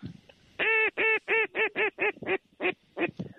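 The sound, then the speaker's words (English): Waterfowl call in a rapid series of about ten loud, nasal honks, each with a downward-bending pitch, coming in quick bursts with brief gaps between them. “Oh, look at the birds.”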